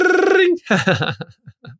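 A voice imitates a ringing school bell with a loud, buzzing, trilled tone for about half a second, then speech follows in short bursts.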